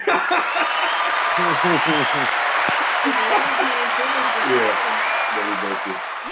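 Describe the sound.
A steady wash of crowd applause fills the whole stretch, with voices chattering and laughing over the top, tapering slightly at the very end.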